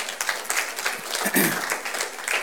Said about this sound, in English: Yeah, you could clap for that.